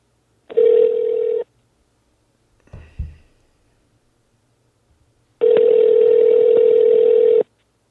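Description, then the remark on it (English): An outgoing phone call rings out twice, each ring a steady buzzing tone with a long pause between, plus a brief soft click in the gap. Fairly loud, with no talking. “So let me get Aaron on the phone real quick.”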